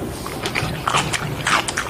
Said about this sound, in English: What's ew, that? What the fuck? Somebody chewing with their mouth open.